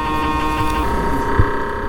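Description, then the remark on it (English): A steady, loud electronic hum with layered tonal bands holds throughout, from an MRI scanner droning during a brain scan, shifting pitch slightly partway through with a brief low thump near the end. “There's like a constant, like, you know, kind of like hum thing.”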